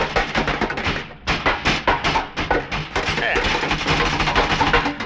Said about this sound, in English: Shoe? Yeah, do what I say. Now, when I start rattling the door, you start banging away at the bulkhead.